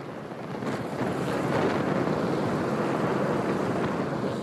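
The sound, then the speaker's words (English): A Customs and Border Protection helicopter roars low over a protest, sending a cloud of dust and debris flying; its loud, steady rush of rotor noise and churning wind fills the whole few seconds with no voices. “Again, a Customs and Border Protection helicopter showed up, sending a cloud of dust and debris flying over the protest.”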